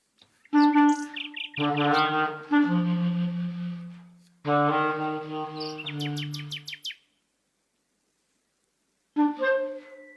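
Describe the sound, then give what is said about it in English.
A nightingale sings loud in rich bursts of rapid whistles and high trills, with long, low held tones beneath. A long pause follows before one final short phrase. “The nightingale and his music do not care.”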